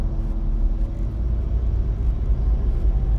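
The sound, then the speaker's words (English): Steady low rumble of a car engine heard from inside the vehicle while driving, a continuous droning hum with faint road noise and no voices. “And as I'm driving in my car, talking to you about happiness, I can't wait to make the changes that I need to make in order to continue with my happiness.”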